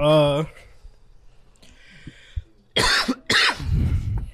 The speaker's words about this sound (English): A smoker cough, my fault.